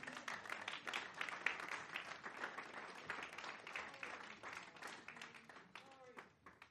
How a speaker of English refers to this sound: Let's all stand. Praise the Lord and give the Lord a good clap offering this morning.